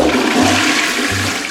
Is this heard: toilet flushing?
yes